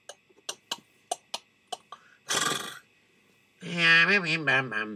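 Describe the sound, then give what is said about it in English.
A horse neighs loudly near the end, a wavering high whinny, after a run of sharp clip-clop hoof clicks and a brief breathy snort. “Horse for sale, wagon with tape.”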